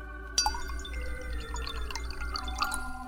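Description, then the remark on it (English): A martini is poured from a glass carafe into a glass in a bedroom, a steady trickle whose pitch climbs as the glass fills, starting with a light clink. “Here, I'll take off the top and pour you one.”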